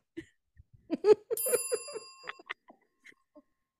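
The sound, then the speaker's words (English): A single bright notification-bell ding sound effect rings out clearly and fades with a shimmering tail, surrounded by a few short clicks and soft knocking sounds before and after. “If you haven't already, please make sure to like, subscribe, and click the notification bell. Ding.”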